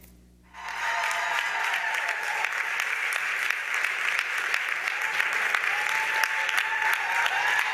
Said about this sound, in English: When Davis appeared, before she reached the podium, her audience burst into applause and gave her a standing ovation.